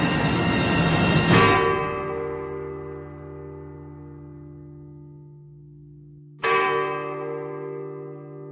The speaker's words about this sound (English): And we pull back, and we go into a freeze frame, and we go into sepia, and then dissolve to the actual signatures on the Declaration of Independence, and end with the sound of the ringing of the Liberty Bell.